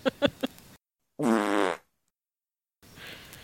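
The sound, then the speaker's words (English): A single loud, buzzy fart noise lasting about half a second, sitting alone between brief bursts of other sound and stretches of silence. “I'm going to edit all the time, in fart noises.”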